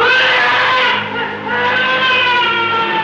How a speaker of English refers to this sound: So when Silver is paralyzed, the zombies then grab him and throw him in the well while he's screaming. This is horrifying screaming. We'll play that here. It's very horrifying.